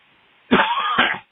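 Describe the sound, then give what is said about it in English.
Two harsh, raspy coughs in quick succession from smoking marijuana, loud, the second following right on the first, with no talking around them. “That's a marijuana cough.”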